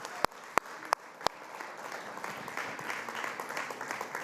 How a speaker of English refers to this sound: Let's give them one more round of applause. Thank you, guys.